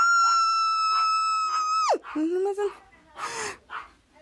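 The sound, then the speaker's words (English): A loud, piercing high-pitched scream from a girl, Piper, holds steady for about two seconds, then breaks off with a sharp downward slide, followed by a few seconds of animated voice sounds. “And cut to Piper screaming.”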